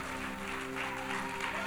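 A round of applause, a dense, steady wash of many hands clapping that keeps an even loudness throughout, with a faint sustained tone humming underneath.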